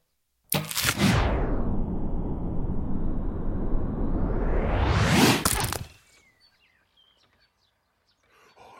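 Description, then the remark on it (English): A loud, sustained whooshing rush of an arrow in flight ends in a sharp splitting crack as it splits another arrow, followed by a quiet stretch with faint birds chirping. “She has split the arrow.”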